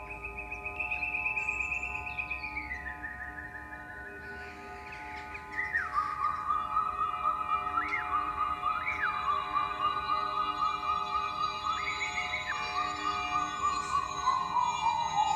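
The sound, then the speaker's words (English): Birdsong played by self-built robotic automata music machines: sustained, pure whistling tones that glide and step downward, punctuated by short upward chirps, over a steady low drone. No voices. “In this extract, Sarah is using her robotics to play birdsong.”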